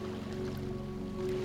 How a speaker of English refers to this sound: As you listen to the waves, repeat in your mind or out loud the following affirmations.